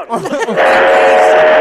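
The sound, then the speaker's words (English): A train whistle sounds as a train approaches, a loud, steady, sustained tone that starts after a brief burst of voices and holds to the end. “Okay, I hear the whistle.”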